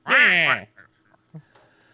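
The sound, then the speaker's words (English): A person imitates a duck with one loud, raspy, nasal quack lasting about half a second, followed by a few faint short sounds and near silence. “I talk like a duck quacking.”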